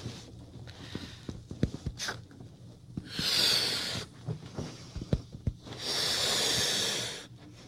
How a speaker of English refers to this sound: She's blowing up the balloon.